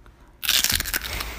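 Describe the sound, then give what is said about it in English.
A loud crunch of biting into crispy pork crackling, bursting in abruptly after a quiet moment, followed by a dense run of sharp crackly snaps as it breaks apart. “So for all those squares out there, we're gonna give you all an opportunity first to listen to the crack.”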